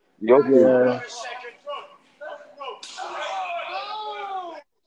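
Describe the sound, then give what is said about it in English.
A single hard, sharp slap cracks at the start of a WWE wrestling match in the ring, followed by loud shouting and excited voices reacting. “The slap. The physicality of this match.”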